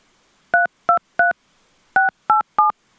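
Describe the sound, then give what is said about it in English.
Seven crisp touch-tone beeps from a phone keypad as a wireless phone number is entered into an AT&T automated phone menu, pressed in two quick groups of three and four with a short pause between, each tone a clear dual-pitched electronic beep, loud. “Please enter the wireless phone number that you are calling about, starting with the area code.”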